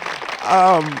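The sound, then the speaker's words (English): An audience claps steadily for about a second for a phone-in caller who is a winner, a dense crackling wash of hands, while a single voice calls out briefly over the applause midway through. “That's the reason they're clapping.”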